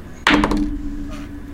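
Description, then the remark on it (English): Glass dice rolled for a perception check in a tabletop game hit a hard surface with a sudden loud clatter, tumbling through several quick knocks before settling, a low ringing tone lingering beneath and one more soft tap near the end. “Come on, glass dice, let's go.”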